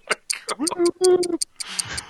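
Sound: clock ticking sound effect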